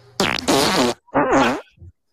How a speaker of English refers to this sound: Farts are never going to not be funny. That was my goal with doing this. I'm like, I could play the same fart every time and it's still funny, to me at least.